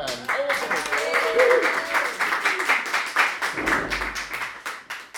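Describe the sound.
An audience applauds a first-time author about to present a book, dense rapid clapping that sustains for several seconds with some voices and cheers rising over it early on, then thinning slightly toward the end.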